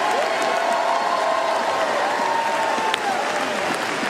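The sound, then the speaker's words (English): A large crowd applauds as Evangelist Jonathan Shuttlesworth is introduced, a steady, dense, continuous wash of hand clapping at a constant loudness with faint cheering mixed in, lasting throughout. “Just a big hand clap.”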